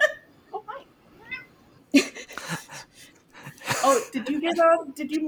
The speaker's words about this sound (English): Oh, did you hear the? Did you meow on the? I just heard the meow. I was like, meow.